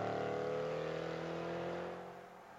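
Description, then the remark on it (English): A race car driven by Stephen Mackler drones loudly with a steady, buzzing whine as it pulls away to leave a long uphill pit lane, the sound thinning and fading slightly over the last second. No voices are heard. “So for Stephen Mackler, gets behind the wheel of the car, gets to leave the pit lane, and unfortunately will have to be making a trip back down it.”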